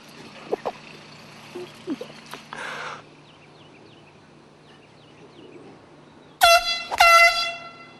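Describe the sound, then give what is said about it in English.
Two loud, sudden air horn blasts burst out near the end, one right after the other, as a prank on a golf course, cutting through a quiet outdoor scene with faint birds chirping and a low background hum. “The two angry gentlemen who were the victims of the golf course air horn stunt”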